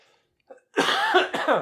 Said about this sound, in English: Man, this cough, it's been going on for like a month now. I finally had to go to the doctor. I got some antibiotics and some steroid to try and clear this up.